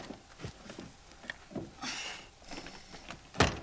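A stuck door is shoved and rattled open, with scattered thumps and a rough scraping stretch, ending in one sharp, loud bang. No voices.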